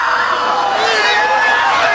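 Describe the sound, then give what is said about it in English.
A woman lets out a loud, sustained high-pitched scream that wavers slightly in pitch and holds steadily for about two seconds without a break. “Courtney Cox unleashing her scream there.”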